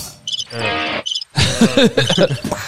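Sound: crickets chirping sound effect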